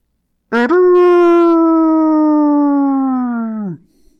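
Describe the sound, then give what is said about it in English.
A single long horn blast shudders through a snowy camp, faint and far, holding a steady, low, buzzy note for about three seconds and sagging slightly in pitch before cutting off. It sounds on its own, with no talking. “Chet stopped mid-step, swallowing his curse as the sound of the horns shuddered through the camp, faint and far, yet unmistakable.”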